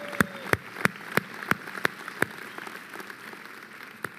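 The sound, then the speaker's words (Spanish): Audience applause for the San Antonio campus in a steady rhythmic beat: about seven sharp, evenly spaced claps ring out, then fade into softer scattered clapping over a low hiss, with no one speaking. “San Antonio, dense un fuerte aplauso.”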